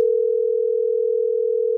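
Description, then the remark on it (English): A steady, unbroken telephone dial tone hums at a constant pitch and loudness for the whole short stretch, clear with nothing else around it, before a phone call is made. “Hey, do you want to make a phone call?”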